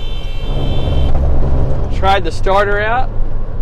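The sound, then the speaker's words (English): Two short car horn honks, each a bright, buzzy tone of about half a second, sound over the steady low rumble of a moving vehicle, as the driver honks at another driver about a foot into his lane on a hilly, curvy road. “Sorry if you heard the horn honk. It's because I'm driving down the road and there's a guy in my lane.”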